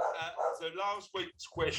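A dog barks and yelps several times in quick succession, fairly loud, the calls tonal and whiny with short gaps between bursts.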